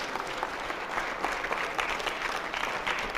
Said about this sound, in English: Now clap your hand.